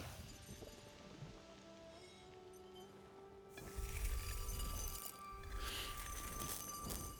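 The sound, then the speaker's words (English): Glass chinks and clinks with thin, lingering ringing tones, then a fuller, busier rush of tinkling and rustling swells in about halfway through and carries on to the end. “It's glass.”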